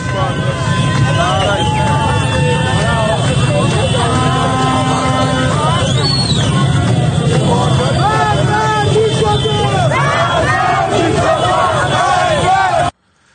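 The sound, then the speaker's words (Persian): A large protest crowd fills an outdoor street with loud, continuous chanting, shouting and raised voices, many people calling out together over a dense roar of noise that runs steadily from start to finish. “مردم؟ آره مردم.”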